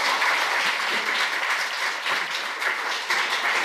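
A steady round of applause from an audience for the sponsors from Revolut, many hands clapping in a dense, continuous wash of noise that holds at an even, fairly loud level throughout with no voices.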